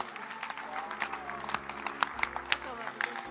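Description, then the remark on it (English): An audience claps for the Lord Jesus steadily for a few seconds, a dense patter of many hands with a few sharper claps standing out, a faint hum of voices underneath. “Clap for the Lord Jesus.”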